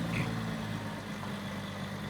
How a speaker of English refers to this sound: Now let's see him picking it up. Here we go. And there she goes. There she goes, being carried away in the dump truck.